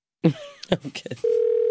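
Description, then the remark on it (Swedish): A brief burst of voices and shuffling sounds gives way to a steady, continuous telephone ringing tone as a phone call is placed, clear and holding at an even pitch until the end. “Vi ringer honom, driver med honom att att det luktar marijuana i hans trappuppgång.”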